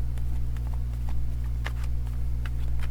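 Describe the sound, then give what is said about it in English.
A deck of cards being shuffled: irregular, light papery clicks and flicks scattered across a few seconds over a steady low hum, with no one talking. “Let me just complete the shuffle.”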